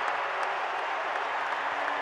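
An arena crowd at a Jazz basketball game, on its feet, cheers loudly after Kelly Olynyk's back-to-back three-pointers, a steady roar of voices and clapping that holds at full volume for about two seconds without letting up. No one speaks over it.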